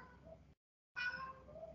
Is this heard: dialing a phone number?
no